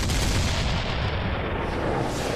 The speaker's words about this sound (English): Just as the 9 crew members had gone to the forecastle to have their lunch, a loud explosion shattered the stillness of the afternoon.